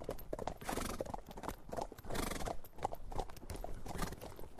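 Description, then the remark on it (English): Horses walk along steadily on an early morning ride in spring sunshine in the southern uplands of Scotland, their hooves clip-clopping in a regular rhythm with a brief whinny, the footfalls continuing throughout at moderate loudness with no talking. “When I got the chance of an early morning ride out in the spring sunshine on the horses from Craigengillan stables here in the southern uplands of Scotland, well, I couldn't resist it.”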